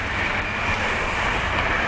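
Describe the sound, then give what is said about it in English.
A steady, continuous rumble of a passing train near a train station in a city, loud, with broad hissing noise and no distinct clacks or voices over it. “That's something I can talk about a little bit later, but I'm getting close to the train station, so we'll see how much we keep up with the conversation.”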